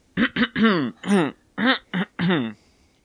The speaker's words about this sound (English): Just clear my throat a little bit.